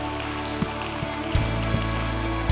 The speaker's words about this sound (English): Come on, let's give Jesus another big hand clap of praise today. He is worthy.